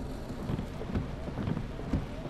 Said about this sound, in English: Damn. I hate driving at night when it's raining. It's dark as hell.